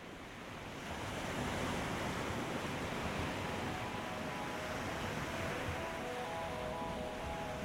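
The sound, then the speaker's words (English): Sea waves wash steadily against the coast at Whitby in a continuous broad roar, swelling in after a quieter first second, with a windy hiss and no voices. “If you were standing on the coast at Whitby, looking out to sea, if you were lucky enough to be there on a good weather day, you'd see a really blue sea, a sea that perhaps doesn't look full of life, but you'd hear seabirds wheeling around overhead.”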